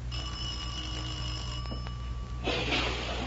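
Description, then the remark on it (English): A doorbell rings in one steady, shrill electric peal lasting a couple of seconds, then cuts off into a wash of hissing background noise. No one speaks. “Oh, I think this is the doorbell.”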